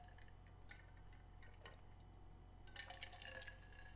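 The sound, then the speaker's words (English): A person quietly takes a sip of their water: faint wet clicks and small swallowing sounds, with a short slurpy burst near the end, no one talking. “Now, let me ask you guys this while I take a sip of my water.”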